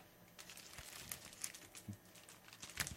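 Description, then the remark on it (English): Tinsel being crinkled as a makeshift revolving-door effect: soft, irregular rustling with scattered bright crackles over about three seconds, fairly quiet, with no voices. “You need to use your gifts and the tinsel here and the mince pies to come up with the sound effect for a revolving door.”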